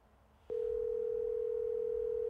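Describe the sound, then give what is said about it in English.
A telephone dial tone cuts in abruptly after a brief quiet moment and holds as one steady, unbroken hum, loud, with only faint background noise beneath and no talking, heard while a phone call is being placed. “Oh, nobody picks up the phone when you're calling.”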